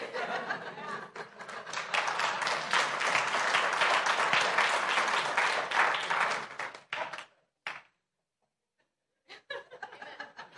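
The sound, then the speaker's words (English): An audience claps along with the worship leader, loudly and steadily for about seven seconds, with scattered laughter mixed in, then the clapping cuts off into near silence before a few faint sounds return. “When the worship leader claps, clap with them.”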